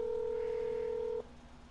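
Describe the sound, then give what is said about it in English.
A single steady telephone keypad tone as a phone call is dialed holds for just over a second, clear, then cuts off abruptly, leaving only faint background hiss. No one speaks. “So this is call number one.”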